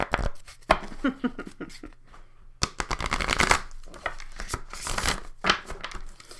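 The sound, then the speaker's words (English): A deck of somewhat sticky oracle cards being shuffled in two long stretches, a dense papery riffling and flapping with quick crisp slaps, brief pause between, no talking. “Let's shuffle one more time.”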